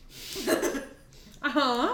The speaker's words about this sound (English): Yeah. I may leave that in. Just because I think it was funny. Please do. I think burps are funny.